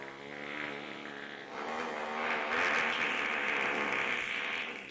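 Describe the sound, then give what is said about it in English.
A long, loud, buzzy fart drones on without a break for several seconds, growing a little louder partway through, with no voices over it. “How do you fart? Like, I never farted that long, I don't think.”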